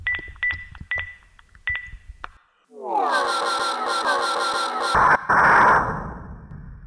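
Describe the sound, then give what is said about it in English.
Quick, high electronic beeps as buttons are pressed on the Hitchhiker's Guide, in uneven groups of two and three, followed by a rising, warbling whir and a loud hissing burst. No voices. “He pulled out the Hitchhiker's Guide and began punching buttons.”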